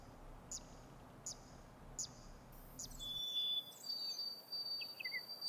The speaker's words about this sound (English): Are those dark-eyed juncos? I haven't seen those since I was a kid. They're my favorites.